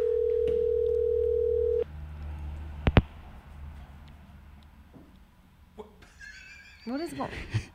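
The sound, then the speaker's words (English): An unanswered phone call rings on speakerphone, a loud, steady ringing tone for about two seconds, then cuts off. Clicks and quiet background noise follow, with a brief vocal sound near the end. “It's just fucking ringing and ringing and ringing.”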